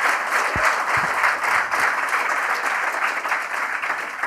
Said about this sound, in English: I think Micheál gets a round of applause individually, doesn't he? Yeah.